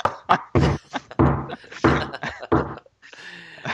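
A series of heavy, hollow thuds like knocks on a door, about five uneven blows, each with a short booming ring, followed by a quieter rustling stretch.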